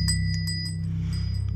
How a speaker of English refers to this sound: The cat stops in its tracks, its bright blue eyes directed at them, then turns and runs across the attic and down the stairs, the sound of the small bell on its collar fading behind it.